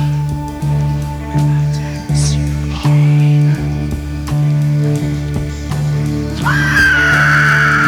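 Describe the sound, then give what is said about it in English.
Heavy rock music pounds with a thick, repeating bass guitar line, then a shrill, eerie scream by the band's bassist rises sharply over it near the end and holds, harsh and wailing. “Yeah, it's like a dying fox or a ring wraith or something like that. It's horrendous.”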